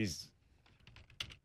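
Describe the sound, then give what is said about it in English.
Quick clicks of typing on a computer keyboard as someone looks up a quote, a brisk cluster of keystrokes following a brief burst of noise at the start. “Can you hear me typing?”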